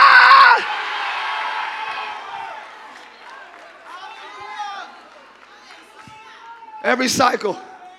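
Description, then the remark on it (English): A large crowd, urged by a speaker to scream, erupts in loud screaming and shouting, the roar fading into scattered overlapping yells and whoops before another sharp burst of cheering near the end. “Just scream before I even start the lesson. Scream, it's over!”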